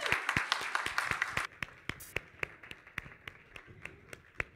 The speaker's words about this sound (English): They're taking a bow. Can we do it? Let's do one more bow. Okay, you guys can go on down. That was so nice. Let's clap. One more clap.